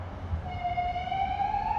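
Emergency vehicle sirens wail at night, holding a steady high tone that slowly rises in pitch, heard from outside at moderate volume over a low rumble of background traffic, with no one talking.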